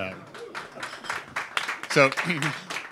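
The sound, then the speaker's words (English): Light, scattered applause from an audience at the start of a panel discussion, a patter of claps that rises slightly, with a person speaking over it partway through. “You can applaud if you want.”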